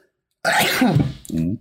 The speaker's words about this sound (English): I wish you guys could see the wind up for that sneeze. Dude, strong ass sneeze, bro.